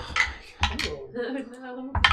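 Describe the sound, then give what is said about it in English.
Dice rolled for a stealth check in a game clatter and tumble across a hard surface in a few sharp, rattling bursts, with a faint murmuring voice in the pause between them. “I want everybody to roll me a stealth check.”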